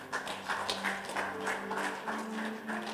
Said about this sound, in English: If you can clap.